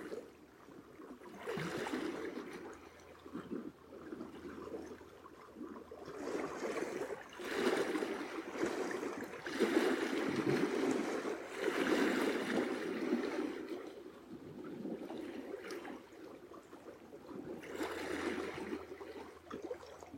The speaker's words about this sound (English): The water and rocks at play, back and forth, each wave new.